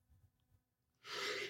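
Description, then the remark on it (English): A single sharp, breathy sneeze bursts out loudly after a second of near-quiet low rumble, a hissing rush of air that cuts off at the end. No one speaks. “Bless you.”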